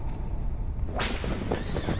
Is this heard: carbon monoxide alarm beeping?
no